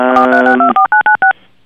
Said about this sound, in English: Can you hear something keep beeping? I don't know if that's the studio pissing about or us. I'm not exactly sure what it is. Hey? I'm not exactly sure. I keep hearing like if someone's trying to dial out on my phone.